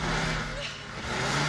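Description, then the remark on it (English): A car engine roars loudly, holding a steady rumbling drone that dips briefly in the middle before surging back up, as if revving in place; the gas pedal is pushed down but the car does not move. “Dad, I'm pushing the gas down. It ain't moving. I don't know. Sounds like the transmission.”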